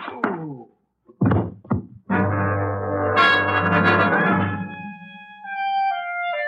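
A gun barrel strikes a head: a dull thud and two sharp knocks, then a loud, sustained droning ring with bell-like overtones that gradually fades, like a comic blow effect.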